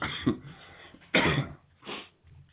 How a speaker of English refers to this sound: Darn, this cough is... So how about that? Give me a second.